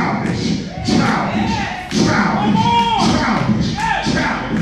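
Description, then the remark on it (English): Heavy stamping thuds land in an uneven rhythm, about five loud low impacts, while a man's voice and crowd noise carry on underneath. “And I'm putting away childish man. I'm stamping it.”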